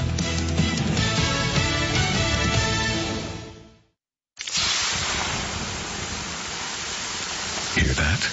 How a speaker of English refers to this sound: The sound of water being poured on 800-degree rocks. If you were here in this sauna, you'd be so hot you wouldn't have the energy to move.